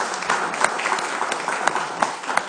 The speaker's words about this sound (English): I don't know if how you guys do it here, but can we just give God a hand of praise?